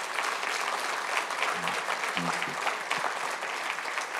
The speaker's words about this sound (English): So let's just honor, we clap and we honor you.